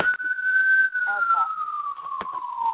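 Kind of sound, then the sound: vehicle, passing emergency vehicle siren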